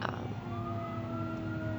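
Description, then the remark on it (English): A fire truck siren wails steadily over a low engine rumble, its tone sliding slightly upward as the vehicle goes by. “We love the fire trucks.”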